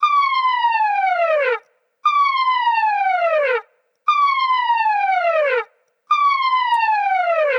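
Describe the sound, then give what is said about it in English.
A rebel ship alarm blares in four repeated, loud descending wails, each lasting about a second and a half and separated by short gaps of silence, with a bright harmonic-rich tone. “All right, next one, number 7, is the Rebel ship alarm sound.”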